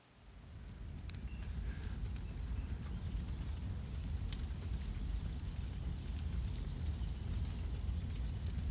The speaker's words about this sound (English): First, I want to begin with a picture, really, of a fire in a fireplace. Just take this in.